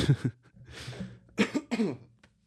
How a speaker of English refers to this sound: Oh, excuse me. I keep coughing lots. I had COVID a couple of weeks ago.